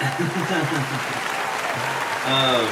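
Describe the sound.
An audience claps steadily, a dense wash of hand claps filling the whole moment, with voices speaking and calling out over the applause.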